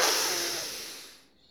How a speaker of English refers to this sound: And that little hold right there. Yeah, I could feel it. Like already the nitrous oxide. So even just one deep breath in and holding at the top, you'll already start to feel that loopy feeling. That's the elevation of the nitrous oxide coming up.